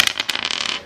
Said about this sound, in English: So you get 2 dice to begin with. You roll the 2 dice and you add up the result.